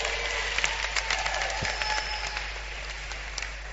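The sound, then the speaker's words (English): An audience claps steadily for a group of girls, a dense patter of many hands with sharp individual slaps standing out, holding fairly even in loudness and thinning slightly toward the end. “Clap your hands for those girls.”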